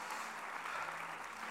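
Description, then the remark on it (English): An audience at a church service claps their hands unto Jesus in a steady, dense wash of applause that holds an even level throughout, with no clear voices over it. “Oh, clap your hands unto Jesus right now.”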